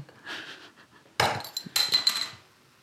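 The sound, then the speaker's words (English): A glass bottle cap is popped off a shaken drink with a bottle opener, giving a sharp crack, followed by a rush of crackling fizz that hisses for a moment and fades. Nobody speaks. “I've just shook it for the fizz. It's going to fizz over.”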